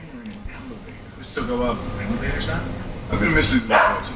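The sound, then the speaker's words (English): A dog barks excitedly in a handful of sharp, irregular bursts, with some muffled voices and background noise mixed in, reacting to a lawn worker arriving to mow the lawn. “The dog was just losing its mind because the lawn guy came to mow the lawn.”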